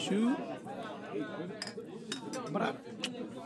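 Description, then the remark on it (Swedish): Glasses clink together in a toast, four or five bright, sharp taps spread over a few seconds, with people's voices and murmuring underneath. “Skål, skål. Skål, fellas.”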